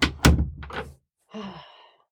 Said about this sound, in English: close the door because that's our sound studio.